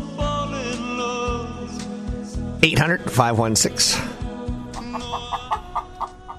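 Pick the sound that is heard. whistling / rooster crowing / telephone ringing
rooster crowing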